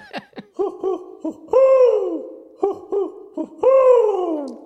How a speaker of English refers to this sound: Watch out for that owl, Gene. It tends to swoop.